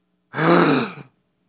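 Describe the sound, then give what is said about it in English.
A single forceful breath is blown out to imitate God breathing life into man, loud, with a slightly voiced, rushing 'haaah' quality that lasts under a second, then stops abruptly into silence. “This close. Breathing life.”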